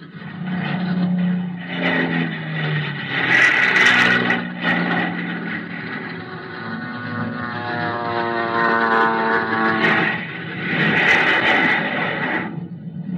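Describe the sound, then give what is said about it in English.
Aircraft engines roar steadily for the whole stretch as planes launch one by one from an aircraft carrier's flight deck, with shifting droning tones and two louder surges as planes power up and take off one after another. “One by one, we got our planes in the air.”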